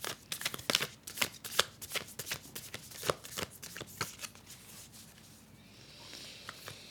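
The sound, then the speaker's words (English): Card shuffling: a quick run of crisp, papery riffles and snaps that rattle along for several seconds, then soften into a quieter slide of cards near the end, with no voices. “Shuffling these cards feels like an old friend.”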